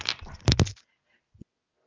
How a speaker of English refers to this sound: And by the way, do you hear that craziness going on? That's my kitten playing with a ball rolling around. Can you hear that? I thought it was a dog, but, you know, I'm a cat person, so rock on, cat.